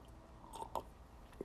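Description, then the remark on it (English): Someone takes a quiet sip of wine: a few soft, wet mouth clicks and a swallow over a faint background hush, with no talking. “Excuse me, I'm going to get a sip of my wine right now.”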